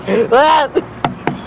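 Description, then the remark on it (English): A brief voiced sound is followed by two or three sharp knocks on a car window, spaced a fraction of a second apart and fairly loud. “Keep on knocking, but you can't come in.”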